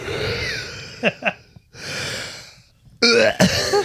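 A person yawns up close: a long breathy intake of air, then a short voiced, sighing groan at the end. Nobody talks.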